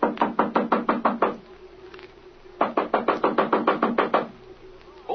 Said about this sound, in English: Well, here we are. Knock on that door there, Jimmy. Okay, Speed.